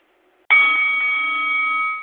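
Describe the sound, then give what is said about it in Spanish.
A single bright bell strikes sharply after a moment of quiet to start a rap battle, its clear metallic tone ringing on steadily and loudly before starting to fade near the end, with no voices. “Ok, ya tú sabes, el sonido de la campana a batallar.”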